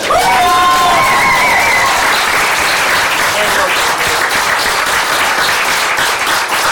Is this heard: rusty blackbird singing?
no